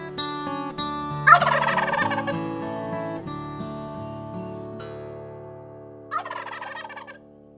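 wild turkey gobbling

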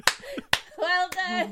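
hands clapping

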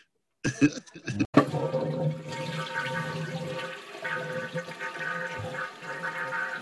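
toilet flushing

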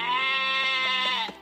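sheep bleating

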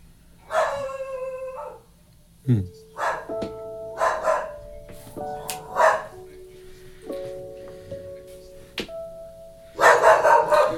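dog barking

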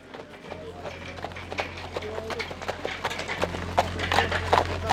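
horse hooves clip-clopping

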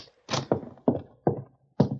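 door opening and closing

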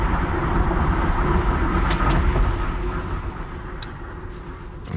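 car interior

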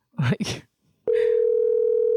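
telephone call ringing tone

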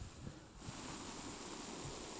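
liquid being poured

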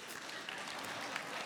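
audience applause

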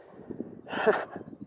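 dog panting

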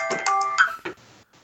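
phone alarm ringing

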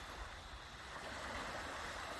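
calm sea waves

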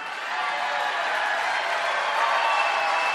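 rally crowd cheering

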